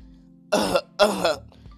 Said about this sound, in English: Some of y'all might get with this, and some of y'all won't, but listen, let me clear my throat.